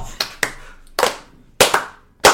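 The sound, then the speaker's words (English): Several people clap along together in a loose, slightly uneven beat, about six sharp claps with some doubled hits where hands land a moment apart. No one speaks. “Let's all clap along.”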